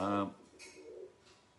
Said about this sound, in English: That's the pigeon. The pigeon says, "Say, bugger off! Don't disrupt the session."